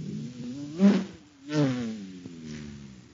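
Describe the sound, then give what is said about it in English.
A car engine roars and revs in two loud surges, its throaty drone rising and falling, then settling into a steady rumble with no talking. “That cosmic surface car is really roaring now because it's supercharged with super fuel.”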